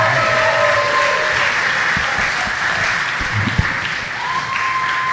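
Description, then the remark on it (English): Sustained applause from an audience fills the space, a dense, steady wash of many hands clapping at once, fairly loud and continuous with no voices standing out. “Keep clapping”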